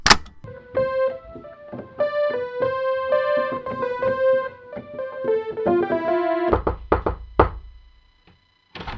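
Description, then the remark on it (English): A short run of tuneful notes gives way to several sharp plastic clunks and clicks as a cassette labelled 1979, a recording studio outtake, is pushed into a player and the mechanism latches, followed by near silence. “Labelled 1979. Wow. Tony recording studio outtake. Shall we have a listen to that? Yeah, pop it in.”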